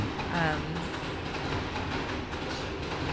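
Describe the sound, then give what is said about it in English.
A train rumbles steadily along the rails, a loud continuous roar with a faint rhythmic clatter and a brief high squeal early on. “For the train.”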